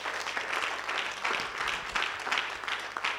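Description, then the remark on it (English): An audience claps steadily for a few seconds, a dense, crackling patter of many hands at a fairly even, moderate loudness, with no voices standing out. “Oh, go ahead, clap.”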